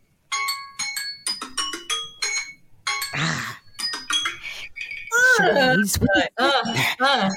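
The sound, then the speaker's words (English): A timer alarm for a game of charades chimes in a quick run of bright, bell-like electronic tones at shifting pitches, then a person starts talking as the alarm stops. “That was my timer going off.”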